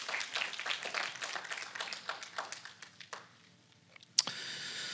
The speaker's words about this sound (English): Church family, can we give them a hand clap and welcome this morning?